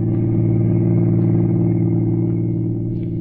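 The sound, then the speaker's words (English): A car's engine drones steadily, a low, even rumble with faint rattles as the vehicle cruises at constant speed along a lonely highway at 8 in the evening, with no voices. “For the next evening at 8, he was behind the wheel of a car, rolling smoothly along a lonely highway.”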